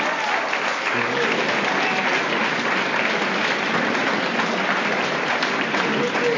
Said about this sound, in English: Let's give him one more round of applause.